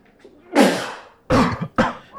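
Three sharp, explosive sneezes burst out one after another, the first longer and breathier, the next two quick and forceful, with no talking around them.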